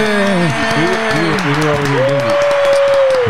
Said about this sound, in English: Where is my applause button? No, there it is. Right here.